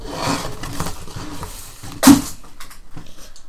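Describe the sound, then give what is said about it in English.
A deck of cards being shuffled: steady papery riffling and rustling, a single sharp flutter-snap partway through, then quieter shuffling. No one speaks. “I'm just going to shuffle these real quick.”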